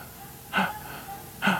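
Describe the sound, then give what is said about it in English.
A voice imitates the breathing of a small Methodist church building bound with chains: two sharp, strained gasps for breath, spaced about a second apart, loud, with quieter raspy breathing between them. “It's breathing. Y'all ever had the breath knocked out of you?”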